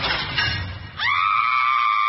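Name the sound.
screaming sound effect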